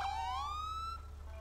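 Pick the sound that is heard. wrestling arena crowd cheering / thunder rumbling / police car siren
police car siren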